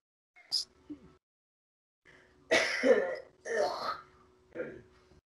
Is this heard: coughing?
yes